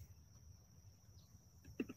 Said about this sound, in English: Okay. Crickets.